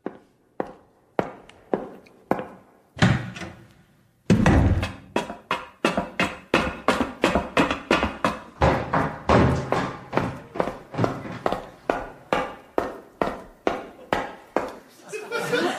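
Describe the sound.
Someone at an audition imitates footsteps with their mouth: a few slow, spaced thuds that quicken into a steady, brisk run of sharp, loud clicky steps, with no words spoken.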